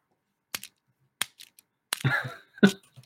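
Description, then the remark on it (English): A handful of sharp clicks and clacks from a fidget toy being played with, arriving at irregular intervals about a second apart, with a brief rattling cluster near the end. “I'm just realizing it's going to be really bad audio because I keep playing with my fidget toy, so you'll just hear a lot of clicking and clacking.”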